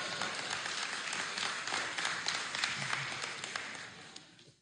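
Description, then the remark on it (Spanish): An audience applauds, a dense wash of many hands clapping at a steady level before it tapers off and stops near the end. No voices are heard. “Un aplauso porque sí nos divertimos, ¿no?”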